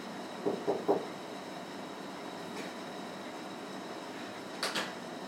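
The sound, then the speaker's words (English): Three quick knocks on a locked door sound against a steady low hum, followed a few seconds later by a brief metallic rattle of the door. No one speaks. “Has he locked it? Yeah, somebody's locked it. No, you have to knock on the door.”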